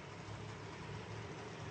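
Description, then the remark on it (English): A steady, low rumble of monster truck engines at a Monster Truck Night event at the Rio Rancho event center, droning continuously without a break, washed in broad roaring noise, with no voices present. “By the way, friend of the show, if you're just joining us, we're at the Rio Rancho event center for Monster Truck Night.”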